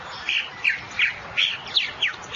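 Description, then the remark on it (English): A purple martin's male jeer song: a run of harsh, scratchy chirps and descending notes repeated about six times in quick succession, steady over light background hiss. “This is the male jeer song.”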